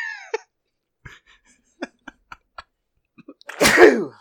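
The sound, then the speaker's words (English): Several short, sharp breaths and clicks build up before one loud sneeze, caused by allergies, bursts out at the end. No one is talking. “by sneezing”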